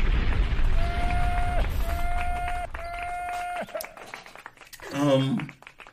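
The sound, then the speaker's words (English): A bomb-drop sound effect: three long, steady whistling tones over a noisy rumble, then a loud, warbling boom that bursts out near the end and quickly fades. “Clap it up. Drop a bomb.”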